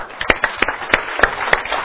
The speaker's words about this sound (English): I want to ask you to clap with me and applause. Can you do that?